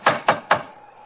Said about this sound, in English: Here's the door, but I can't see any sign of a bell. They seem a trifle short of modern conveniences. Let's try the knocker.